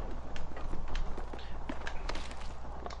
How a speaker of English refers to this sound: I'm pretty sure I heard footsteps near you.